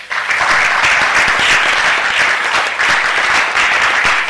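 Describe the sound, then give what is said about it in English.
A crowd breaks into loud, sustained applause for AGRA's support to seed companies that now supply 48% of seed requirements, a dense wash of many hands clapping at steady volume throughout, with no speech over it. “In fact, this one needs a big applause.”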